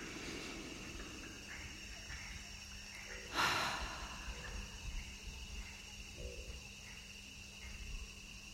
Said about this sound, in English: what I'll invite you to do is just to take a nice, long, conscious and loving breath in through the nose. And a soft out through the mouth. Again, long breath in through the nose.